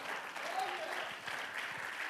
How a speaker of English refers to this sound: Clap your hands unto the Lord. Hallelujah.